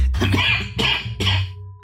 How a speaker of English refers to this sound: Cut that coughing out. Leave it in.